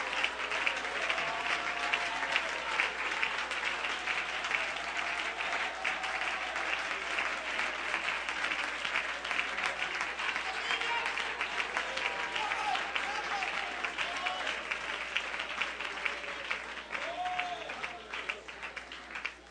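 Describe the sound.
An audience breaks into sustained applause as a hand clap of praise to the Lord, a dense, steady wash of many hands clapping at once for the full stretch, with a few voices calling out faintly beneath it.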